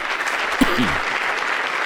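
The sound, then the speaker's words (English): An audience applauds Barack Obama steadily, a dense wash of many hands clapping at an even loudness throughout, with a brief vocal cheer rising through it partway in. “They love to clap for Barack.”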